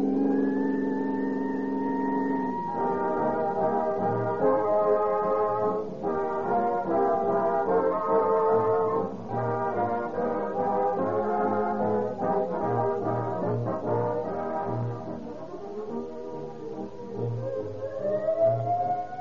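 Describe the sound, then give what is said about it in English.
A loud, shrill emergency siren of a police car, ambulance, or fire engine wails with sliding tones, mixed with a revving vehicle engine, continuous for about twenty seconds with no talking. “I hear that shrill siren of a police car, ambulance, or fire engine”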